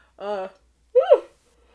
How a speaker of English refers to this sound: Excuse me, I'm thinking about the movie and yawning.